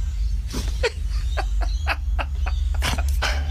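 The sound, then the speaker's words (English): A boxer dog, looking out a window, barks repeatedly in a rapid, uneven series of loud, sharp bursts over a steady low background hum, with no talking. “Okay, this is a boxer. All right. Now he's looking out the window, off the couch. He's going nuts.”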